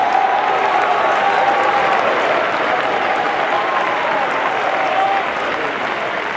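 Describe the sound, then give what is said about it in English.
A large crowd applauds steadily for several seconds in thanksgiving to God, a dense wash of clapping with cheering voices and shouts mixed in, loud and sustained throughout. “I think we ought to muster a roar from our seats in thanksgiving that God did not lead us into some halfway deal or some Mickey Mouse persuasion, but we have the power of God unto salvation.”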